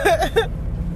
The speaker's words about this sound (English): Enjoy the ambient sounds of the car.